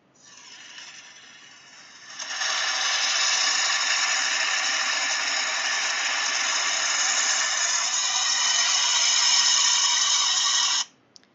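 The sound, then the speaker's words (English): A faulty car engine growls before being repaired: a quieter rumble builds into a loud, harsh, buzzing drone that holds steady for several seconds, then cuts off abruptly. No one speaks. “Are you trying to growl at me like a bear? And you're just like, no, that's what my engine's doing.”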